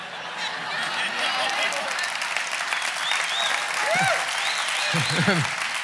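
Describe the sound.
An audience claps steadily for several seconds, a dense, even wash of applause with a few voices briefly calling out over it toward the end.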